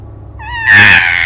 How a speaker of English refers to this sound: just on the edge of hearing, you hear a strange, high-pitched shriek.